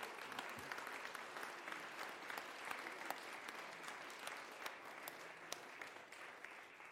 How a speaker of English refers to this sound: But before we pray, you can show your commitment and joy by just applauding them in their decision.